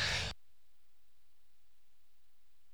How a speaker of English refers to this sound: And before I read, I'm going to cough.